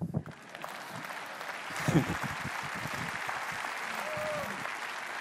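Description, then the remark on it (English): A crowd breaks into steady applause, a dense wash of many hands clapping that swells after a moment and holds at a fairly loud, even level, with a few voices mixed into it. “That's where you clap.”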